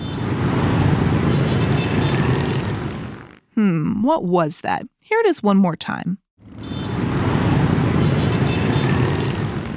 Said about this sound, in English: That sound is specifically the motorbikes in Ho Chi Minh, a city in the country of Vietnam.